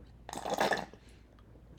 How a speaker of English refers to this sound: I wake up super duper early with my cup of coffee. Let me take a sip.